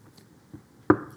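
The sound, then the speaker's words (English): Two firm knocks land close together after a quiet start, sharp and fairly loud, like knuckles rapping on a solid door, with a fainter tap shortly before them. “When do you knock on a door?”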